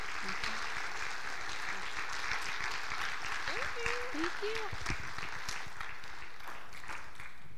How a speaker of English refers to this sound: So will you guys give a round of applause for these guys and say thank you?